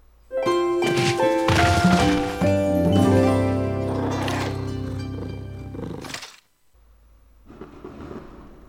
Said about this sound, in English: Oh, there's some fireworks going off. I can't see them there.